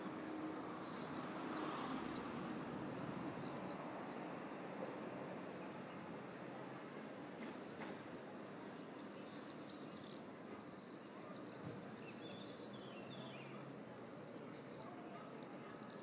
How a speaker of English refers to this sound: It's that time of the day also in which all the sparrows are out.